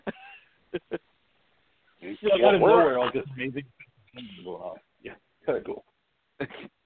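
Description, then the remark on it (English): A man's voice mimics a monkey with a burst of loud, warbling hoots and chatter, framed by short, sharp vocal yelps before and after. “I was just making fun of the monkey.”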